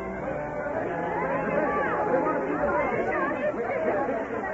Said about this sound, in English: The crowd became restless. They had been here for hours, and all for nothing, and angry voices echoed against the hills.